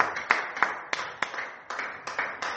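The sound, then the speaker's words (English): A group claps their hands for Jesus in a steady, fairly quick rhythm, sharp repeated claps rising over a dense wash of overlapping applause-like noise, moderately loud. “Can you clap your hands for Jesus? Oh, can you clap your hands?”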